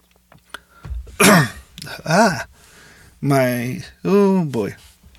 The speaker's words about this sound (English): Sorry about that, guys. Just swallowed spit incorrectly. I hate it when I do that.